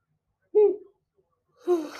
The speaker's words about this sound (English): Oh my God, sorry. I was trying so hard not to yawn.